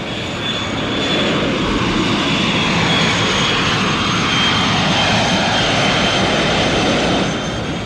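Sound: airplane engines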